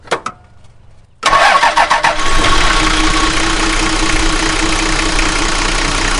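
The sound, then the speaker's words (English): An old car engine cranks briefly, then catches with a loud roar and settles into a steady, rumbling idle with a low rhythmic chug, and no one speaks. “So maybe start her up.”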